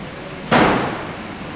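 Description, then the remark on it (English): A vibration hammer strikes a larger pilot industrial spray dryer at the GEA Test Centre in Søborg, making vibrations to keep the powder flowing: a sharp, loud metallic bang that rings and fades over about half a second above a steady background hum. “That was one of the hammers that creates vibrations inside the centre's larger pilot spray dryers to keep the powder flowing.”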